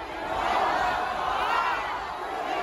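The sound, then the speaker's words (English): A large crowd in China roars and chatters together in a dense, steady wash of many voices, with rising cheers swelling through the mass of sound, as people gather to see in the New Year 2023. “But first, across China, crowds gathered to see in 2023.”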